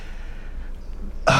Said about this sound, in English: Makes me gasp inside like that.